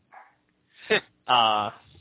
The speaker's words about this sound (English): Besides my dog barking.